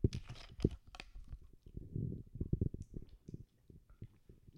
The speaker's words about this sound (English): I'm gonna take a drink of water real quick.